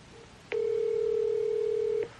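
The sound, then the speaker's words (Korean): A single steady telephone ringback tone sounds for about a second and a half while calling Jeno, a clear, flat electronic hum that starts and stops abruptly, with no one talking. “그는 전화를 받을 것인가?”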